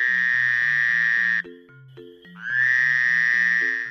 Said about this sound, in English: Frogs, they croak.